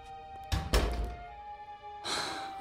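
A front door swings shut with a solid thunk, followed by a short rattle as it settles, then a quiet stretch and a soft, breathy rustle.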